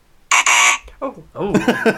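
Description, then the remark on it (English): A loud, harsh quiz-show correct/incorrect buzzer blares for about half a second as it is being tested, followed by a brief softer tone and then a voice talking. “Oh, let me just test your correct or incorrect buzzer.”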